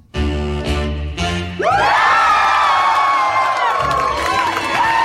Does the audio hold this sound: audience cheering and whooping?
yes